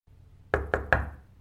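Three firm, loud knocks on a door in quick, even succession, each thud ringing briefly before the next.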